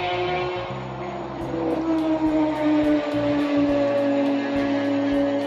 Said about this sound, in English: I know y'all just heard that badass motorcycle just fly by in the background. One of the downfalls about living so close to the highway. But I like that acceleration though.